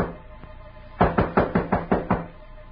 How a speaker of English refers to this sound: Suddenly there was a knock on the door.